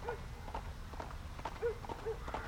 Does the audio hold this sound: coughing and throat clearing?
no